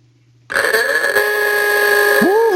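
A loud ooga-style klaxon horn bursts in after a brief silence, a buzzy, harmonically rich blare held for about two seconds, with a swooping pitch bend near the end.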